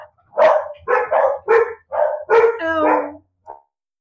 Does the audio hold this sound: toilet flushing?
no